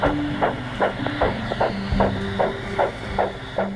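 A recorded human heartbeat thumps steadily and quickly, about eight even beats, close and clear over a low, droning hum.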